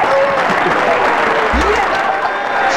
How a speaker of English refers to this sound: The crowd's gone wild there. Sorry, David. Yeah. Really drowned you out.